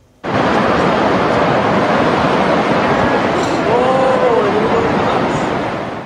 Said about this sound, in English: That riverfront home is obviously no match for the flooding along the Yellowstone River as it falls into the raging water when the riverbank was eaten away.